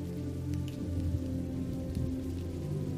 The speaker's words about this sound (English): The hypnotic soundtrack of rain lures you to sleep as you drift deeper and deeper down into the comforts of your bed, safe, dry, relaxed, and fulfilled,